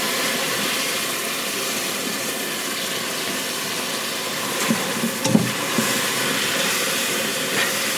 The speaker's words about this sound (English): And whenever you are happy with its texture, it's very, very smooth, you can't see any pronounced sugar granules in it, then you're going to keep stirring while you add 2 cups of water. It's gonna bubble up on you. Make sure you stir.